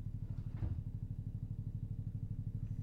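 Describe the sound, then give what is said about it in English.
A low-flying crop-spraying plane's engine drones steadily over a house, a deep rumbling hum with a fast, regular throb that holds constant throughout, with no voices. “What is he fucking spraying right now?”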